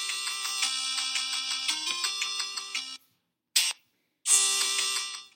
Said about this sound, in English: So as soon as, let's say I ask the average Joe a question, I'm going to hit my start on my 5-second countdown timer, and then you are going to hear this sound.